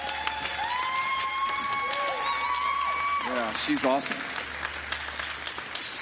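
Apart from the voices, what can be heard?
audience applause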